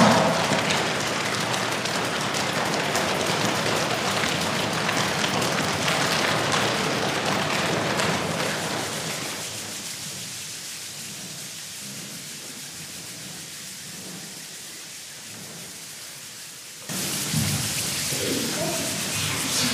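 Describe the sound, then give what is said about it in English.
A steady, dense roar of rain, loud at first and then easing to a softer patter before surging again near the end, likely a crowd imitating a rainstorm with their hands. “Okay, I think the storm has done enough damage.”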